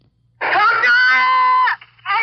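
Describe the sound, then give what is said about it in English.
A five-year-old boy beside a bridge screams loudly for his parents, one long sustained wailing cry that breaks off, followed by the start of another shrill cry, over a low steady hum. “That's a five-year-old boy beside a bridge, screaming for his parents.”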